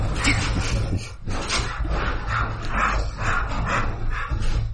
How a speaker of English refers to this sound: Is that dog antics? Yeah, there are some dog antics going on. Distant dog antics.